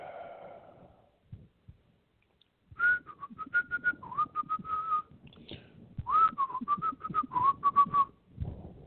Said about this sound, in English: Yeah, I know. I'm whistling. It happens.